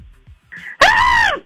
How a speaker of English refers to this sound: Hey, do a little, do a girl scream for us.